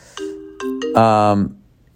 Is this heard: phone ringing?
yes